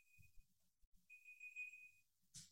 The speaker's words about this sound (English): I have no idea what this is. It seems like it's in the room. Is it in the room? Yeah, I have no idea. Some beeping. It sounds like it's... Is it... It's not a fire alarm. Is it a smoke alarm?